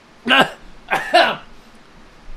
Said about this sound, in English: Best cough.